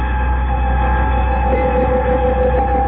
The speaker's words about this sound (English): A few moments later, the Terra 5 lands near the damaged ship, and Buzz and Happy emerge from the hatch in their heavily insulated spacesuits.